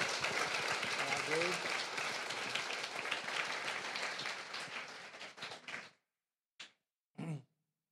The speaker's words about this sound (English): And now our final guest of the night. Everybody, a round of applause for